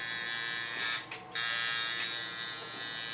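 A tattoo machine buzzes with a steady, high, whining drone while a tattoo artist works on a woman's fourth tattoo, an angel with a watercolor monkey inside. It cuts out briefly about a second in, then starts up again and runs on slightly softer. No one speaks.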